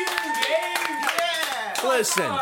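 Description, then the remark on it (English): Scattered, uneven claps from a small audience ring out while several voices shout and talk loudly over them throughout. “Clap again, everybody.”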